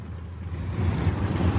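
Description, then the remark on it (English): An old car, an old banger, drives along the M11 motorway at about 70 miles an hour, its engine a steady low rumble with broad road noise that swells louder about halfway through and holds there. No one speaks. “We're going to turn around and head onto the M11 and see how fast we can go.”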